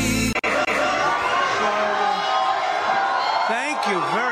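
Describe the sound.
A large crowd at a Donald Trump rally in Philadelphia cheering and shouting in a dense, steady roar of many voices, with a short gap early on and rising, swooping whoops near the end.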